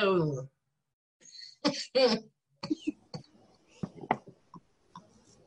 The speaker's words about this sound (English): Show them your volcano thing, or... Your vaporizer. Can you show him that? She's too busy coughing her head off for a second. Hey, everybody on Facebook Land. Everybody's coughing and hacking.